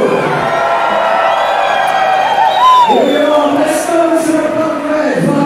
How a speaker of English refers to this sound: It's noisy, there's a lot of whooping and hollering.